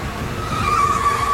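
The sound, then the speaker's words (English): An orange van skids as it pulls in with a loud, sustained tire squeal over engine rumble, the shrill screech building and holding through the short moment. “He just pulled right in front of us in the orange van.”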